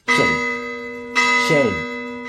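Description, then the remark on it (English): A deep, solemn shame bell rings twice about a second apart, each strike loud with a long resonant hum, and a brief voice-like call overlaps the second toll. “And so for that, I brought back Shane Bell.”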